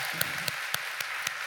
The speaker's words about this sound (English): Come on, one more time. Round. You got to clap a lot today.